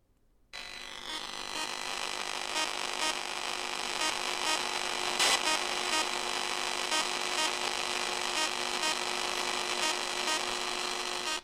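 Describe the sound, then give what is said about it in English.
A steady wash of electronic white noise kicks in abruptly after a brief silence, layered with buzzing tonal hums and faint regular pulses, holding at an even loudness throughout with no voices. “That might be my favorite white noise sample I've ever heard.”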